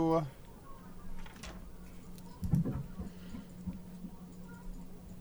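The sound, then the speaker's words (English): A single sharp sneeze bursts out midway, brief, against a quiet background with a low steady hum and faint background voices. “Bless you. Bless you.”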